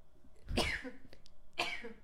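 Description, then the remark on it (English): Two sharp, explosive sneezes about a second apart, the first louder and fuller than the second, with no talking in between. “I have to sneeze, hold on.”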